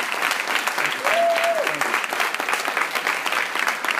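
An audience at Cabrini College applauds a guest steadily, a dense, continuous wash of many hands clapping at an even loudness throughout, with a brief high whistle or squeal rising and falling early on.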